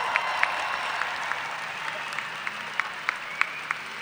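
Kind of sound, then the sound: crowd, audience cheering and applauding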